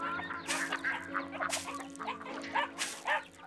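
A new puppy being raised in a family barn yips and whines, with short high-pitched bursts coming every second or so, over a low steady hum and faint animal sounds.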